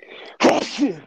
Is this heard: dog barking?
no